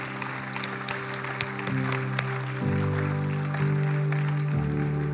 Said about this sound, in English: Come on, let's give a loud clap offering of praise to our Lord God.